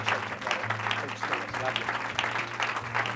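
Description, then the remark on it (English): An audience at a church service claps their hands in praise to the Lord, a dense wash of many hands clapping at a lively rhythm, with a low steady hum underneath and some voices faintly mixed in. “Why don't you give that hand clap to the Lord tonight?”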